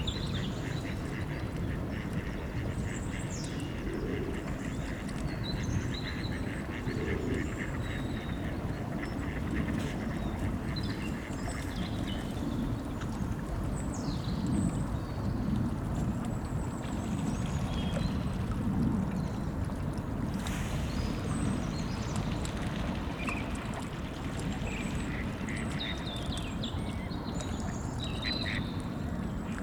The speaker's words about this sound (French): Des oiseaux. De l'eau.